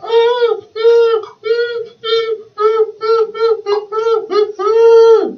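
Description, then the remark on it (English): A voice lets out a rapid series of about ten short, high-pitched, strained cries in an uneven rhythm, imitating over-the-top dubbed horror-movie screams, ending on a longer wail. “It's fucking dubbing screams like that.”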